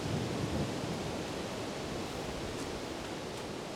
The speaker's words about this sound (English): We've been at the peak. Yeah. It was pretty windy up there.